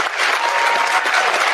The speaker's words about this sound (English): Okay, they're clapping.